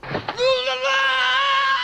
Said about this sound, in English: You get the great Sully scream as he descends down into the canyon to meet his doom.